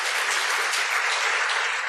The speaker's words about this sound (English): Little round of applause for God.